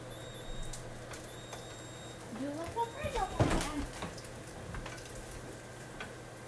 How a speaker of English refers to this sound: The microwave. What? That was the microwave.